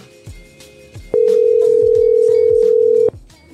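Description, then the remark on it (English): A loud, steady telephone dial tone from a failed call holds a single unbroken pitch for about two seconds, then cuts off abruptly, with faint murmuring background noise before and after it. “Could be a bad call.”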